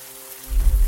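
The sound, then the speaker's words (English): Steady heavy rain in the woods hisses across the whole clip, coming down harder and swelling halfway through into a louder, deeper wash with a low rumbling undertone. No voices are heard. “The rain was coming down harder.”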